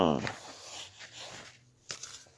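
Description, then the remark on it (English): Playing cards are swept and gathered into a pile, with soft papery sliding and rustling followed by a couple of sharp taps; a brief voice murmur opens it. “All of them, I did all of them. Put them back together.”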